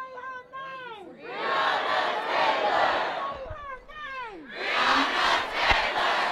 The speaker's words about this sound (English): Mr. President, you have 26 yes votes and 0 no votes. Thank you. Congratulations. Congratulations. And after the cheers die down